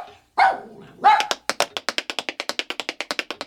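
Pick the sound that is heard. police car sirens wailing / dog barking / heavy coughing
dog barking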